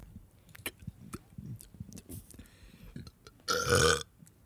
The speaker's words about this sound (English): Let's have a burping contest. Go.